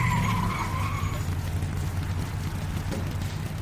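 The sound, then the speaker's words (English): A race car skids into a scheduled pit stop for a tire pressure adjustment and fuel top-off, tires squealing briefly over a loud, steady engine rumble that stays constant throughout. “We gotta get her in and out of the pit as quickly as possible.”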